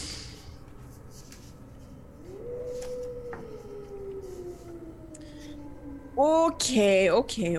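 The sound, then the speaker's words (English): A wolf howls once to the south in a long, drawn-out wail that swoops up and slowly sinks in pitch over a low hiss, before a voice starts talking at the end. “Again, you hear the sound of the wolves.”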